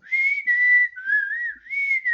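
A person whistles a short wavering melody, several sustained notes that dip and rise with brief breaks between them, clear with no talking.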